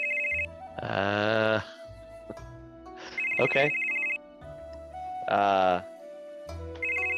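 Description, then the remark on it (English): A telephone ringback tone on an outgoing call to a number in Puyallup repeats in steady electronic bursts separated by short pauses, fairly loud, with a voice briefly speaking over it. “Someone will pick up after a few rings.”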